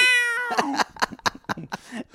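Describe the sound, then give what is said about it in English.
A voice imitates a cat: a long, clear meow followed by a quick series of choppy, yowling bursts, loud with no other talk. “You really should make a piano cat app that every time someone it just goes...”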